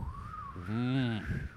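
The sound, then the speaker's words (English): A person whistles one steady, mid-pitched note for about a second and a half to imitate the breeze through a thigh gap while walking. The note wavers slightly, and a short, low voiced sound rises underneath partway through. “It's the breeze that goes between my thigh gap. It sounds like...”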